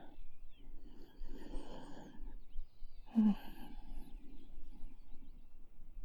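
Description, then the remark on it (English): Two slow, rumbling snores from someone in bed, the first drawn out and breathy, the second a short snorting rasp, with low noisy texture between them and no talking. “Are you snoring? Stop it.”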